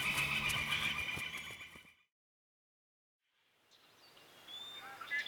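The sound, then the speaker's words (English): A loud, shrill horse whinny rings out for about two seconds, then cuts to silence before faint outdoor ambience with light bird-like chirps fades in. “The horses are right through the trees there.”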